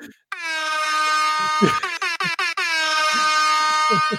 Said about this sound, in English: Well, first thing you got to do is download, like, the air horn app, because you ain't no DJ unless you have, like, an air horn right. on you at the ready.